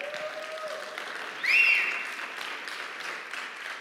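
Steady applause from an audience, a dense wash of clapping that swells briefly in the middle along with a short whistle before settling back to an even patter.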